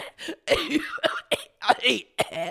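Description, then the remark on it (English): A rapid string of about eight short coughs, some with a raspy voiced edge, coming in an uneven rhythmic sequence with brief pauses between them. “How about I cough us out to the break?”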